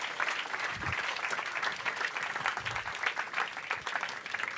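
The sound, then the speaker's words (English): Sustained applause from an audience welcoming guest moderator Boyd Hilton, TV and review editor of Heat magazine, to the stage at an event for the show Life's Too Short; a dense, even patter of many hands clapping steadily with no pauses, fairly loud throughout, with occasional low thumps beneath. “Will you please welcome to the stage our guest moderator, TV and review editor of Heat magazine, and regular broadcaster on television and radio, Boyd Hilton.”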